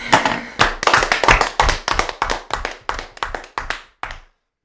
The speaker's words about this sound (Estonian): Teen väikes aplausi ka.